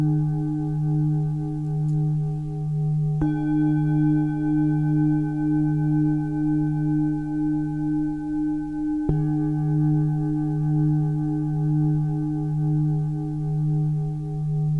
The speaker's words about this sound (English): responding to the sound, breathing in the high tone and breathing out in the low tone. Breathing in and breathing out.